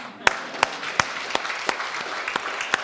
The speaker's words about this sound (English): Can we clap for Jesus?